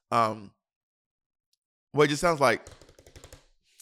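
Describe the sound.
A brief voice, then another, followed by a quick run of about a dozen sharp keyboard clicks, like fast typing, that trail off and grow fainter over a second or so.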